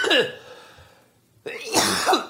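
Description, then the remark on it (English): A man coughs hard: a harsh opening hack, a brief pause, then a longer rough burst of several raspy coughs in quick succession. “For somebody who gets physicals as much as I do, you think I wouldn't be coughing?”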